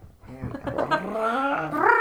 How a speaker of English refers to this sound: Oh, God, that cat is loud.